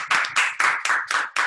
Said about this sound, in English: Let's give a clap to everybody who has done well.